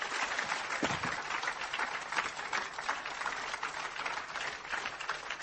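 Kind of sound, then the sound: crowd, audience clapping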